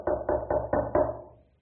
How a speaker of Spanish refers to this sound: Al otro día en la mañana, está en el hotel y le toca la puerta.